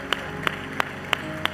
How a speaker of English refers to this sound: Come on, give a round of applause to those that made that decision today.